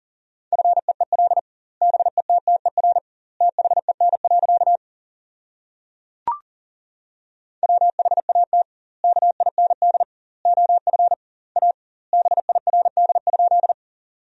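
Fast Morse code at about 40 words per minute with doubled word spacing, sending practice sentences built from the top 400 words: a steady mid-pitched tone keyed in rapid dots and dashes, grouped into words separated by short pauses, with one sharp click in a longer gap midway.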